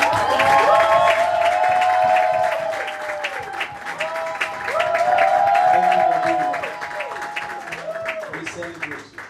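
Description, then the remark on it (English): A large audience claps loudly and steadily for a woman who ministered through worship, with cheers and voices mixed in. The applause swells twice and thins out toward the end. “I want us to clap for the woman of God.”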